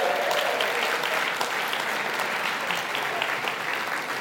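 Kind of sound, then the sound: crowd, audience round of applause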